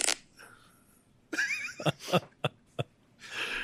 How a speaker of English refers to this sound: You would have the fart soundboard. I just got it.